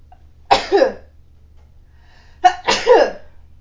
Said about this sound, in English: I need to sneeze.